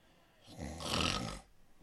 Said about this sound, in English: Snore.